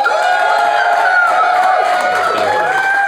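A studio audience cheers and whoops loudly and steadily to vote on who is in the right in a mock courtroom dispute between housemates, many voices overlapping into a dense roar with rising shouts, filling the whole three seconds without a break.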